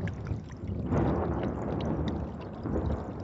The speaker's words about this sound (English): She felt the bottom of her dress hit the water, and the cold creep up her legs as she splashed down into it.